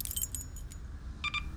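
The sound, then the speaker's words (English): A set of keys on an Omega Gatherings keyring jangles as it is handed over: a cluster of bright metallic clinks, a brief pause, then a second short jingle, over a low background hum with no voices. “Your keys”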